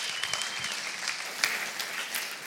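An audience at Jubilee Church claps steadily in a sustained, even, warm round of applause for one of its youth leaders coming up to speak, dense and continuous with a few sharper claps standing out, no voices heard over it.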